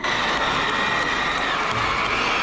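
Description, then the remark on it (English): A crowd applauds and cheers in a dense, steady wash of clapping and voices that holds at an even, fairly loud level for the whole moment, without any clear individual speech. “No, don't give me any applause for that.”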